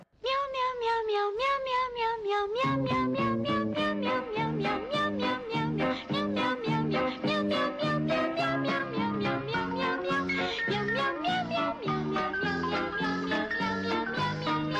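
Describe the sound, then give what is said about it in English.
Cat meows sung as a bouncy advertising jingle for Meow Mix cat food, a steady stream of melodic meows over a loud, upbeat musical backing with no talking. “Meow Mix tastes so good, cats ask for it by name.”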